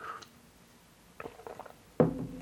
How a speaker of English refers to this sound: had a little sip of tea there.